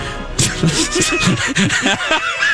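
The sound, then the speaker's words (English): A cat, Kenny the Traffic Kitty, meows repeatedly in quick succession, fairly loud, its drawn-out, wavering cries running together across a couple of seconds. “The cat is back, everybody. That's right. The cat has returned.”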